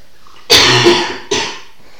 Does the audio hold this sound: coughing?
yes